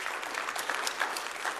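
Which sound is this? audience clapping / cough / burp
audience clapping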